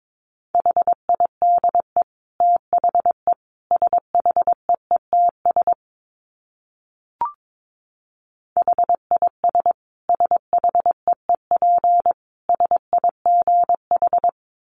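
Morse code beeps out on a single steady mid-pitched tone at a brisk 22 words per minute, in two runs of dots and dashes split by a short pause with a faint click. No voices.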